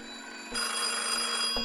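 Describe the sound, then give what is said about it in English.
An old-fashioned telephone bell rings loudly and continuously in a hotel, starting after a brief half-second of low hum and rattling on steadily with no voices. “A flurry of phone calls followed, which the hotel's telephone operator overheard.”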